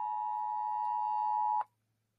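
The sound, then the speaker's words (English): A weather alert tone: one loud, steady, high-pitched electronic beep holding a single pitch for about a second and a half, then cutting off abruptly into silence. No one speaks. “Sorry about my weather alert there.”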